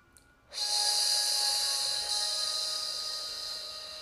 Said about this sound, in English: Just 30 more seconds of that snake breath. If it's not feeling good for you, finding a breath that works best for your system.